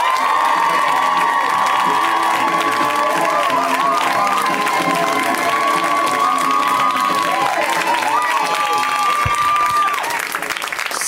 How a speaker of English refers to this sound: So good to be here. Thank you guys for your thunderous applause. You're very kind.